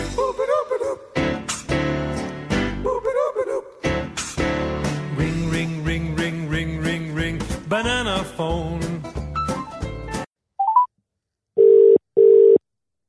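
After about ten seconds of busy music, a short electronic blip sounds, then a telephone ringing tone: two steady, fairly loud beeps in quick succession, clean and alone, with no talk.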